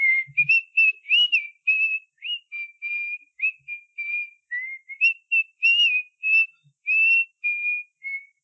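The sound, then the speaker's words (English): Someone whistles a birdsong-like melody: a steady run of short, high, sliding whistled phrases with brief gaps, fairly clear, with no talking over it. “You hear the someone whistling the song that was being whistled by the birds.”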